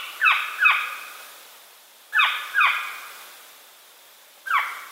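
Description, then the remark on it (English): A northern saw-whet owl, one of North America's smallest owls, gives five harsh, raspy skew calls in the fall, fairly loud, mostly in quick pairs separated by short pauses, with nothing else audible behind them. “In the fall, the birds make a skew call.”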